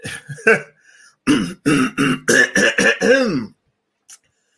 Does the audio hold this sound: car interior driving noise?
no